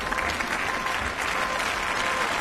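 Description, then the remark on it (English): Sustained applause from members of the European Parliament after Ursula von der Leyen was appointed president of the European Commission, a steady dense patter of many hands clapping at once, loud and continuous without pause. “The applause was loud, but not as loud as it might have been.”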